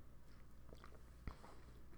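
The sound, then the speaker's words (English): Quiet mouth sounds of someone sipping beer after a toast: a few soft wet slurps and a small gulp-like click midway, over a low steady background hum, with no talking. “Okay, let's take a sip.”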